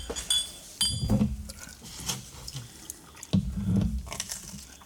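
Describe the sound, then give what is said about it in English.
Miller High Life beer glugs into a glass in two short pours, gurgling and splashing, preceded by a light glassy clink. No one speaks. “I poured High Life first.”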